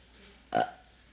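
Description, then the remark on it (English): A single short, abrupt burp, fairly loud, lasting about a quarter second against a quiet background with no talking. “No, I can burp automatically.”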